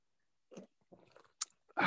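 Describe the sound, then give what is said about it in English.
Someone gulps down a beer in several wet, irregular swallows, quiet at first and building to a louder, breathy burst at the end. No one speaks. “For those just listening, he's actually chugging that.”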